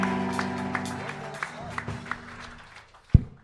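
A comedy show crowd applauds with scattered whoops and cheers as a comedian is welcomed, a dense clatter of clapping that gradually thins out, ending with a sharp low thump.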